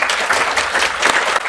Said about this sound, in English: Please give a huge round of applause to these fantastic panelists.